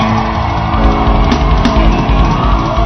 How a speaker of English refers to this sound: But I want you to give your loudest shout yet. Yes!